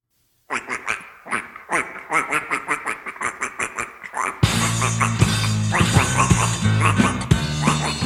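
A rapid series of nasal duck quacks sounds, loud and rhythmic; partway through, upbeat music begins underneath while the quacking carries on.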